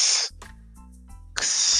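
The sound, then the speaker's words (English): A voice imitates a slithering snake with two long, loud, sharp hisses, one at the start and one at the end, separated by a short stretch of low murmuring and clicks. “That's my impression of the fucking snake slithering shit.”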